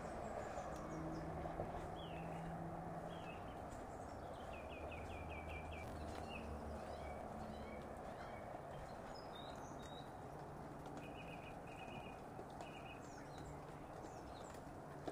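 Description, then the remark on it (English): Squelchy footsteps walk steadily over a soft path and onto grass, with birdsong chirping and a low outdoor rumble in the background. “So you can hear my squelchy footsteps as I walk along the path.”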